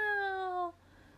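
A single drawn-out meow, clear, with a steady tone that slides slightly downward before cutting off, sounding like a voice imitating a cat.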